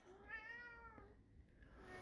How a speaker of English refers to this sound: That was a poorly timed meow. Get out of here, Goose.